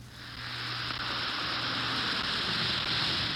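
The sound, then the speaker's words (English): A steady, dense crackling fizz of an Alka-Seltzer tablet dissolving in water, a bright hiss of tiny bursting bubbles that swells slightly and holds at an even level, with no voices. “Listen to it fizz.”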